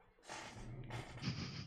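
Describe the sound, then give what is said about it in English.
A dog named Archie sneezes twice in quick succession, short breathy snorting bursts heard fairly quietly from somewhere in the room, with no talking. “Sorry, I hear Archie somewhere in this room sneezing.”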